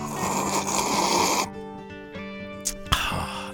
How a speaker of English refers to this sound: It's a little cool. It's not as hot as usual. That was a healthy sip. It was a healthy sip because it's not 900 degrees, number one, which I like it hot. It's cooling off a little bit.